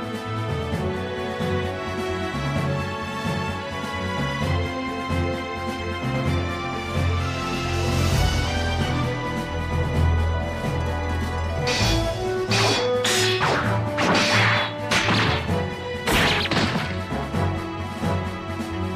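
Full, energetic opening theme music for a video game's animated opening plays throughout, with sustained tonal layers and, in the second half, a run of loud crashing impacts punctuating the score. No one speaks.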